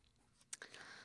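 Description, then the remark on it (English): Soft scratching and light tapping of a pen writing notes by hand on paper, with a couple of sharp little clicks followed by a steady hiss of strokes. “I should write that down so I don't have to go watch this video again.”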